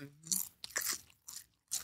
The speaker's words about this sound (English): we be on here eating chips and all this kind of shit. Yes, we do. We got snacks. We be snacked up, baby. I'm snacking.